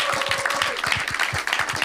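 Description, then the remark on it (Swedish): An audience at the Easter festival (Påskfestival) 2022 applauds one another, dense overlapping claps forming a steady, loud wash of rapid hand slaps with no voices. “Ni som är här, ge varandra en applåd.”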